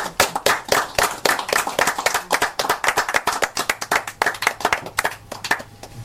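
An audience applauds for the authors at a book reading and launch event at Novel Idea Bookstore: a dense run of sharp hand claps that keeps up steadily for about six seconds, fairly loud, with no voices over it.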